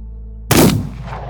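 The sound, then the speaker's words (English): A single gunshot cracks out sharply in a saloon over a steady low hum, then its loud report rumbles and fades over the next moment. No one speaks. “The second man lets out a strangled gasp, and the first man puts a bullet in his head.”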